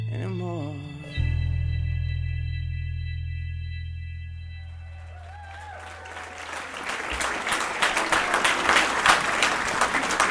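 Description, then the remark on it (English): A sustained musical chord fades out as applause from a large live audience at a show in Detroit swells in, growing into loud, dense clapping that fills the second half. “Look at this giant crowd.”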